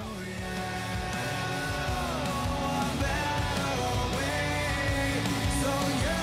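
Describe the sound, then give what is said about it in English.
A loud, strained male vocal belts sustained, raspy notes over a dense, driving rock band, the voice pushing into a scream through a song's chorus and holding steady for several seconds. “let me try to fast forward to the chorus. when he screams right here.”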